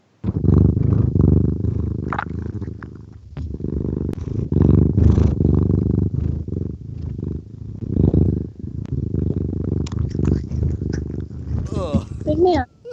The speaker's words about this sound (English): That's him licking the microphone. I gathered. I was like, that's a purr. That's a purr. That's a gross mouth sound.